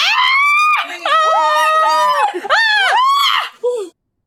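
Loud, shrill screams of fright from more than one person, rising and falling in overlapping bursts, then cutting off into silence.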